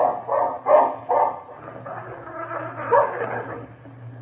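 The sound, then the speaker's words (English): A dog growls at Phil Furs in The Razor: steady and low, broken at the start by a few quick, sharp yips, then settling into a continuous rumbling snarl with no talking. “That dog is growling at Phil Furs.”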